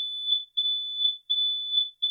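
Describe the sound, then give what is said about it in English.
A phone alarm blares a shrill, high-pitched electronic tone in steady pulses, each lasting about three quarters of a second before a brief gap, with no voices. “That was my freaking phone.”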